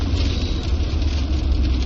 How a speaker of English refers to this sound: Traffic completely came to a stop, and there's lots of semis around us. Oh, sorry. all right, so maybe we'll have less road noise and rain now.